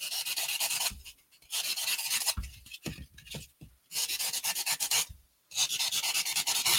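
Styrofoam being carved into a guinea pig sculpture in four loud, harsh scraping bursts, each a gritty rasping stroke of about a second, separated by short pauses with faint squeaky rubbing. No one speaks.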